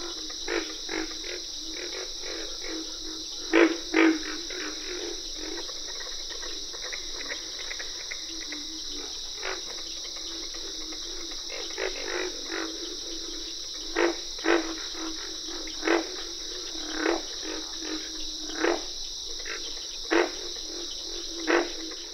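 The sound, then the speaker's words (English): Pig frogs grunting in a swamp pond in the Okefenokee National Wildlife Refuge, Georgia, low abrupt grunts repeating irregularly and sometimes in quick pairs, set against a steady, shrill chorus of insects and frogs, including treble notes of cricket frogs and katuk-katuk calls of carpenter frogs, that never stops. “Pig frogs make the loudest grunts in this pond in the Okefenokee National Wildlife Refuge in Georgia.”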